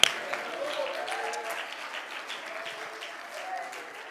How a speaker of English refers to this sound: Oh, clap your hands and praise it.